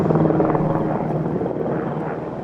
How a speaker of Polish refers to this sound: Przerwijmy na chwilę, bo przelatuje śmigłowiec nad naszymi głowami.